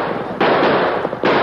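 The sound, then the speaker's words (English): Heavy gunfire from a cliff rattles in a loud, dense crackling barrage, surging abruptly twice as fresh volleys break out, with no voices heard. The men of the Iron Spur fire down from the cliff on the Lone Ranger and Tonto in a running battle in the moonlight. “the men of the Iron Spur poured a withering fire from the cliff down upon the Lone Ranger and Tonto.”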